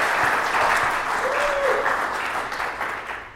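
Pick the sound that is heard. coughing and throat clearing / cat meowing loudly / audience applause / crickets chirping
audience applause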